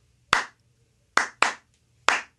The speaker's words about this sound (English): We should clap in with the intro. That would be fun.